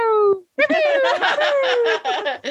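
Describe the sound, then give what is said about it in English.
Fairly loud, a person's voice imitates a cat meowing: a short falling mew, a brief pause, then a longer wavering, gliding meow broken by giggly vocal bursts. “We just meow at each other and purr, I guess, during episodes”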